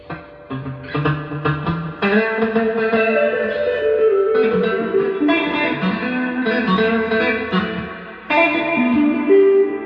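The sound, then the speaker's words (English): Electric guitar played through a Fender reverb pedal, chords and single notes ringing out with a lush, washy tail that blurs each strum into the next, loud with no voices. “So, yeah, instant ambience. Guys. Is that your Ottawa? That's my Fender reverb.”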